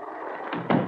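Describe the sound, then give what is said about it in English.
An open door at the end of a hallway in a house swings shut, ending in a single dull, low thud after a lighter knock, heard over a steady background hiss with no voices. “for heaven's sake, child, close the door.”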